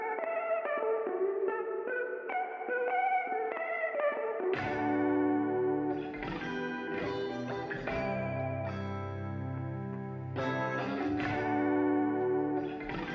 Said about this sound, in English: But here is the guitar stem of this song. So it starts with the little melody, all using the same pedal and some reverb and stuff.